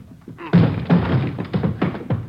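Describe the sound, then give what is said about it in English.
Several heavy thuds land in quick, uneven succession as police officers batter and force open a door, each blow loud and booming with a brief rattle after. “Hit the door.”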